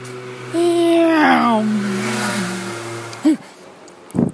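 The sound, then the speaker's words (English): A motorbike passes by, its engine a droning hum that swells, shifts pitch, and fades over a few seconds, followed by a couple of short sharp sounds. “Hello, future me is a motorbike.”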